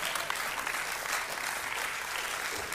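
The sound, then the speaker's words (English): An audience claps steadily, a dense wash of many hands with no clear individual beats, sustained at an even, moderate level throughout. “I am not sure why you're all clapping.”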